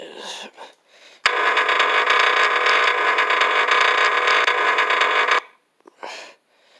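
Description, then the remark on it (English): A squeaky door opening gives out a long, loud, steady creaking whine lasting about four seconds, starting abruptly and cutting off sharply, with brief bits of voices before and after. “Squeaky door.”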